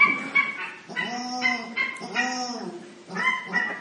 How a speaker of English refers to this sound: So maintaining that same relaxed and spacious and receptive awareness, we can just know the experience of breathing in and breathing out, and the experience of hearing the geese.